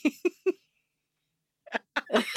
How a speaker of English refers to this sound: Oh, do you know, there's actually the sneezing. When I sneeze, I always sneeze at least 3 times.